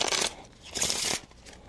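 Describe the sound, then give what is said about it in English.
Playing cards being shuffled during a card trick, after a card is placed back and cut into the center of the deck: two crisp, rustling riffles, each a bright flutter under a second long, followed by a softer, brief ruffle. No one speaks. “Shuffle the cards.”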